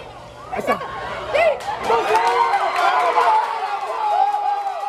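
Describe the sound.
A stadium crowd at a Little League baseball game erupts into a sustained roar of cheering and shouting as the runner is tagged at first base for the final out, many voices layered together. It swells loud after a sharp start and stays dense and excited to the end.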